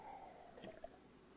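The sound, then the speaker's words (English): A speaker takes a quiet, brief sip of water to keep the throat from drying out: a couple of soft wet slurping and swallowing sounds, with no talking. “Fairly hot in here, and I have to keep drinking a little dab of water, keep my throat from drying out.”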